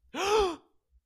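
A single short, breathy gasp of surprise from one person, voiced and rising then falling in pitch, with quiet around it and no talking.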